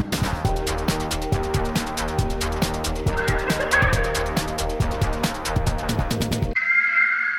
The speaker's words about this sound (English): That's the sound of a hawk. That ain't bad. Because I'm editing and there's hawks above.